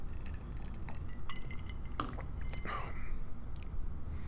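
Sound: sipping whiskey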